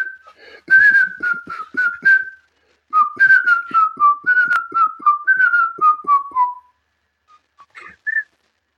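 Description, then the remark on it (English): A person whistles a tune in two clear phrases of steady, gliding notes that step downward, with a short pause between them, fairly loud with no talking. “You are a really good whistler.”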